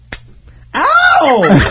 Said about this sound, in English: Go over to my camera and slap me right now. Do it.